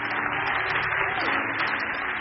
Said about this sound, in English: Clap for the Bible, maybe. Clap for the Bible.